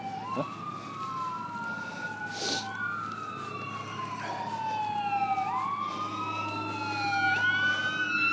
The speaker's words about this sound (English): It's a fire truck.